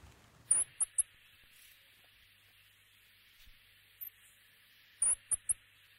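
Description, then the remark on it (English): Two short bursts of three tiny, very high-pitched chirps, spaced several seconds apart over a steady soft hiss, the call of the Piwowo, the official New Zealand Bird of the Year. No one speaks. “We do actually have, in order to paint pictures with sound here a bit, an audio file of what the official Kiwi Bird of the Year sounds like.”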